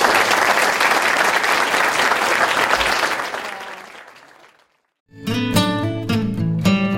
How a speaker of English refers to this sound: Let me introduce the TAs as we do that. But let's give them a round of applause.